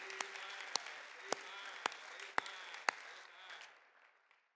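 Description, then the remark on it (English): An audience claps their hands to Jesus Christ in the morning, a dense wash of applause punctuated by six sharp, evenly spaced louder claps, before the clapping tapers off and fades out. “Let's clap our hands to Jesus Christ this morning.”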